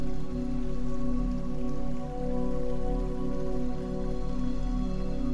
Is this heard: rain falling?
yes